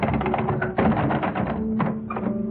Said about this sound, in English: I got out of bed and dressed myself. And I walked quietly to the door. And I turned the handle.